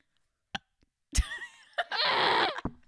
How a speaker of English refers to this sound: That was such a lame burp. It was like barely.